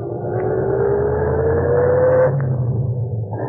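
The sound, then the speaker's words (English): A radio taxi's engine hums steadily as it drives north on the Post Road, its pitch slowly rising as it accelerates, then easing off near the end; loud, with no voices. “We went north on the post road.”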